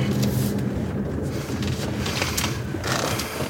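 A car engine hums low and steady, with a faint rise in road noise as the vehicle rolls slowly to a stop outside a house in a cul-de-sac near the border between Grapevine and Southlake. No one speaks.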